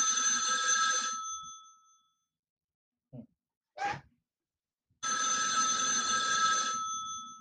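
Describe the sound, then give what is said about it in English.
Two long buzzing rings of a telephone ringback tone on an outgoing call, separated by a few seconds of quiet, with a brief breathy sniff or sneeze-like sound in the gap. The rings are loud. “So let's see if he's going to answer the phone today.”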